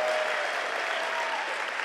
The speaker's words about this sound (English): If you believe He's greater, take 3 seconds, clap your hands, and just praise Him in this place.